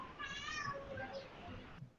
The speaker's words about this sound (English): Is that your cat